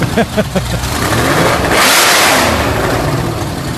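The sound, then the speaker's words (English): A Shelby Daytona race car, number 13, is fired up in a museum: its loud, throaty engine revs hard, climbing to a roaring peak around the middle before settling into a rough, rumbling idle, with no talking. “Firing that thing up.”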